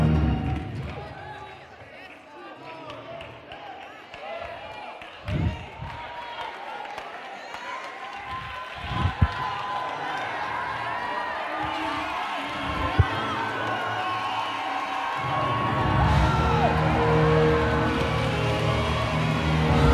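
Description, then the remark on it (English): A large crowd shouts and cheers continuously as a preacher urges them to shout for being born again, with scattered claps and whoops rising and falling, swelling louder toward the end as the noisy mass of voices fills the space. “Start shouting because you passed from death to life.”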